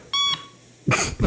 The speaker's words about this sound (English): Okay, we'll just listen to the beep. Hold on, I want to hear the next beep first. It's coming sometime. I swear.